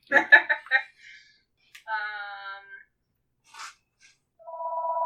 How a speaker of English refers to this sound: Oh, hello, phone. Speaking of landlines... Yeah, who has a landline? I mean, my parents do.